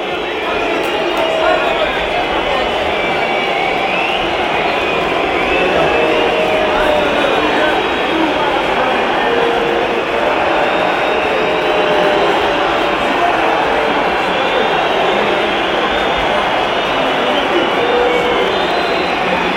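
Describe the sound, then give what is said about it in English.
A loud, steady stadium crowd roars throughout, with shrill whistling from Estoril fans woven into the din during a penalty shootout as they try to put off a penalty taker. No clear voices stand out. “It's the Estoril fans' turn to whistle.”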